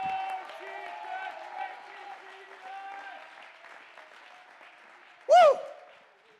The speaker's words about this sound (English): Clap your hands and shout with a voice of triumph.